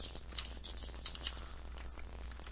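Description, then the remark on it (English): Continuous papery rustling and scraping with a few sharper crinkles as rolled paper is slid out of an addressed mailing tube, with no voices. “It is a tube. Uh-huh. Addressed to God knows who. Okay, this is paper.”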